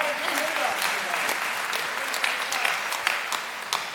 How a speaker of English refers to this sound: We can clap. It's all right. We can clap.